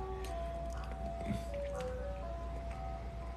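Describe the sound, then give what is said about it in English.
An ice cream truck's tinkly electronic jingle plays steadily amid a noisy outdoor background with a low rumble, its sustained melodic tones clearly audible throughout. “This ice cream truck is more real than God.”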